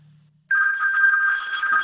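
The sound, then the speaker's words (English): A telephone rings, its bright electronic trill cutting in abruptly after a faint low hum and holding steady and loud with a slight warble. No one speaks. “I beg your pardon, someone's ringing.”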